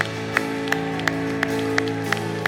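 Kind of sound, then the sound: crowd, audience clapping and shouting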